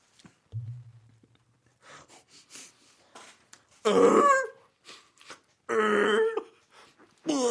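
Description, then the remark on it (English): A person imitates a drunken sea lion with two loud, raspy, barking bellows, separated by quieter grunts and snorts. A low hum sits near the start. “A drunken sea lion.”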